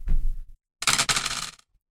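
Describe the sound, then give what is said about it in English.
Four four-sided dice rattle and tumble across a hard tabletop, fairly loud, with a dull thump first, then about a second of bright clattering before it falls silent. No one speaks. “You would estimate it to be worth, roll 4d4.”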